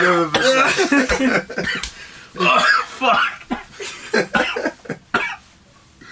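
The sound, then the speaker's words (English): A man coughs hard and repeatedly in a loud, ragged fit, with harsh bursts of varying pitch, while another voice speaks briefly between the coughs. “You alright? Are you breathing? Alright. Who wants the lungs of an 80-year-old?”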